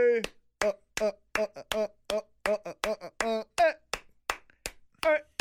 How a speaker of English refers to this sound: All right, enough of that. Nobody wants to hear you clapping.